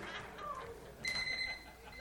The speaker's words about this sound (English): Alarm clock? What are you saying? That they can't wake up? No, I thought it was going to be a fun alarm.